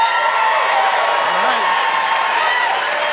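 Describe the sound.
A live audience in Halifax applauds steadily, voting by applause in a debate about saving local newspapers: a dense wash of clapping at full volume for a few seconds, with a faint murmur of crowd voices mixed in.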